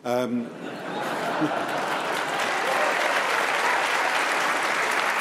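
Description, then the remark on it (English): A crowd at a panel debate bursts into sustained applause for a woman's remark, a dense, steady wash of clapping for several seconds after a brief voice at the start, with a hint of laughter mixed in. “Let her have her applause.”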